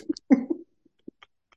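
A short cough bursts out once, rough and fairly loud, then trails off into a few faint, scattered clicks and small noises in otherwise quiet surroundings.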